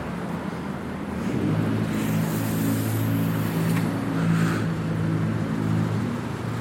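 A loud car engine rumbles with a deep, steady drone and harmonic hum, sustained for several seconds without any talking.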